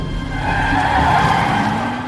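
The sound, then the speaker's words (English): A car accelerates hard as it heads off to a mall, tires squealing and skidding, a sustained screech over a loud engine roar that stays steady for about two seconds. “And she does not slow down that car at all as she heads off to the mall.”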